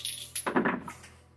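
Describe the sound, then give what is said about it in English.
Several dice clatter across a tabletop in a quick burst of hard little clicks, fairly quiet, settling within about a second with no voices. “Stop rolling so many dice.”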